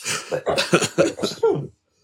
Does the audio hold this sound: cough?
yes